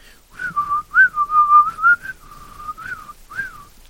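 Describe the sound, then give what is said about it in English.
Someone whistles a rap song melody, a string of sustained, gliding notes in a steady rhythm with brief breaks between phrases, clear and fairly loud with no talking. “he's whistling … by …”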